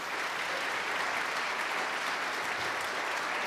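A crowd claps steadily in sustained applause, a dense, even wash of many hands that holds at a constant level throughout, with no voices standing out.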